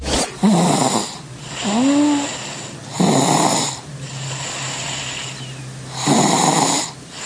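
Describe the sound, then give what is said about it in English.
Rhythmic snoring, about three raspy breaths roughly three seconds apart, each carrying a squeaky, whistling tone over a steady low hum. No one speaks. “Here's your second snorri.”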